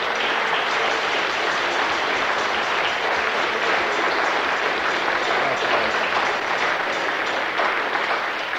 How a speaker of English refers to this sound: Well, shall I give Jesus a clap then? Praise the Lord.